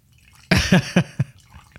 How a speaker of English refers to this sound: And let me refill all this glass. Hold on. Yeah, do the sound effect.